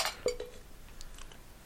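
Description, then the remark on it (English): A few bright clinks of glasses of nitro beer ring out close together near the start as they are touched in a toast, followed by faint lighter tinks and quiet room noise. “Well, cheers, everyone. Let's get the clanking for old time's sake.”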